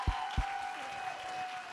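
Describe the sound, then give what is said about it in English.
The Fresh Life church audience claps to thank God in a steady, dense wash of applause, with a sustained musical tone held underneath and two soft low thumps near the start. No one speaks. “Come on, let's clap and thank God today.”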